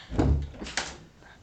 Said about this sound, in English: his brother just closing my door.